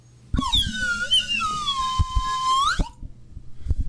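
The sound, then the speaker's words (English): A loud slide whistle plays one long wavering note that glides slowly downward, then swoops sharply upward before cutting off, with faint low thumps underneath. “I always keep that thing on me, aka the whistle of slide.”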